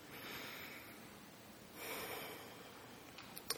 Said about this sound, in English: We breathe together. And breathing together, let us sense one another's loving presence throughout our world and across time. Breathing in and breathing out.